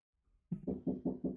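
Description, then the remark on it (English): Five quick, evenly spaced, moderately loud knocks on a door, following a short silence, with no voices. “What's that I hear? Rat-a-tat tatting upon my chamber door.”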